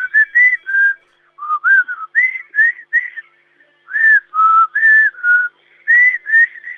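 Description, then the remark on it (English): A person whistles a melodic tune in clear, loud notes, a series of short phrases with brief pauses between them and no talking. “Whistle a tune to me and I'll see if I can work it out.”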